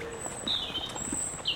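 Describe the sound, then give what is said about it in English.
Birds sing at dusk just after sunset, thin high whistled notes drifting in and out over a quiet outdoor background with a few soft low thuds; no one speaks. “There's still so much awake, so many birds that are still singing.”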